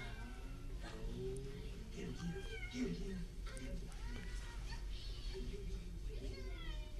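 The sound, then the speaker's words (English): Several drawn-out, wavering cat meows repeat throughout a film scene, clear, over a steady low rumble with faint murmuring voices underneath. “No, you come over here with your cat.”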